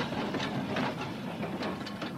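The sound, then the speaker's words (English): A number 42 tram rumbles past, a steady metallic roar broken by regular wheel clacks over the rail joints, with no voices. “No, darling, it's a number 42. There'll be another tram in a minute or two.”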